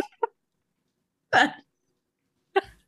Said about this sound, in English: Fart noise. Just really cuts the tension.